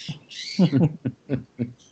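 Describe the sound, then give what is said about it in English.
A pet parrot squawks excitedly, starting with a long, shrill screech and then giving several short, harsh calls in quick succession, fairly loud with no talking. “My parrot is going kind of crazy right now.”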